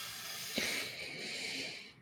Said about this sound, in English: And so have you ever heard of box breathing? Mm-mm. So in through your nose, 4 seconds.